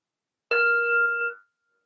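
A meditation bell is struck once, giving a clear, bright ringing tone that holds for about a second before fading away, heard alone with no talking.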